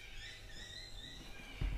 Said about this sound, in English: No, it's birds. Oh, birds.